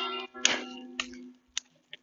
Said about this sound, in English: Not sure if you can hear the church bell, the church tower bell.